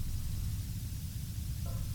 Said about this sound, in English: I have some experience with this. There's nothing more ominous than static.